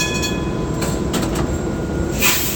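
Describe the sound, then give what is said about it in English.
A historic streetcar in San Francisco, on the line from the Castro to the wharf, rumbles steadily along its rails, with a few sharp clacks over the track joints and faint high metallic squeals from the wheels. No one speaks. “Today, all Muni bus and Metro lines are accessible, as are the historic streetcars that take riders from the Castro to the wharf.”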